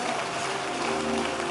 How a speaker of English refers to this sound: If you are clapping, clap well, because you are about to recover.